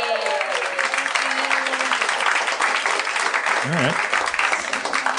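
A room full of people applauds steadily for several seconds, a dense, continuous patter of clapping with a few brief vocal sounds rising over it near the end.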